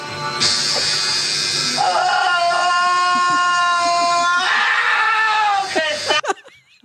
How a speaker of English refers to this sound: That's a person. Jesus Christ. I mean, why it makes me so happy to hear that scream.